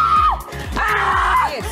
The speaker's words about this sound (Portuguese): Grita, vai, grita. Grita. Não vai vir correndo aqui. Grita, pode gritar aqui mesmo, vai.